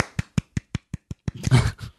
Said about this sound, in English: Yeah, bravo. I'm going to applaud you.